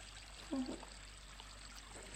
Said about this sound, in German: Und es ist sogar das Wasser vom Brunnen zu hören.